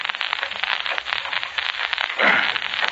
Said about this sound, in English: He doesn't answer his bell or our knocking. Well, I have a pass key here. I'll unlock the door for him.